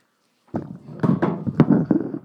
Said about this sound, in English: Whoops. I knocked down the microphone. I hope it's still working.